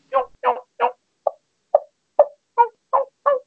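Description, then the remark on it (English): A person imitates a hen turkey by natural voice with nine soft, muted yelps, spaced evenly in a steady rhythm, each a short nasal note, quiet with silence between them. “It's very soft, muted yelps, okay? And all that does is tell him that there's a hen there, okay?”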